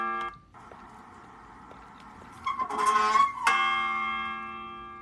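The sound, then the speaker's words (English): A real church bell, played back from a video, begins to ring, its rich sustained tone swelling as several strikes pile up and then ringing out with a long, shimmering decay. “Here's some church bells for you.”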